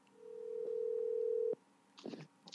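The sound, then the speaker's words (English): A steady telephone dial tone hums for over a second as a call is being placed, briefly interrupted by a click, then cuts off abruptly before a voice begins speaking. “Ladies and gentlemen, we're going to try to get him on the phone right now.”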